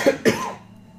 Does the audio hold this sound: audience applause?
no